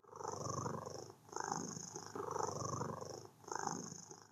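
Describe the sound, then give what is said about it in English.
A steady purr from a creature being petted, undulating against a person's palm, rolls on in alternating inhale and exhale pulses, about four cycles, low and rumbling with a soft buzzing edge, with no voices. “At first, the peeve was unresponsive to her petting, but after a few minutes, it started purring like it had before, undulating against her palm.”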